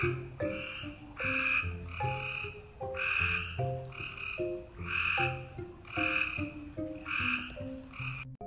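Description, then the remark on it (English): Glowing frogs croak in a steady, rhythmic chorus, with bursts repeating roughly once a second at varying pitches, fairly loud and continuous throughout, with no voices. “I think Frogman is calling us.”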